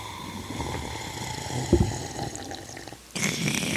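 Someone drinking fractalized water: wet sloshing and a single low gulp midway, over a steady airy hiss that swells louder near the end. No talking.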